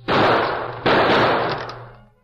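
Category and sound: sound effect, gunshots fired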